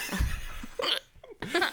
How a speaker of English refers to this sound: With a hiccup in there.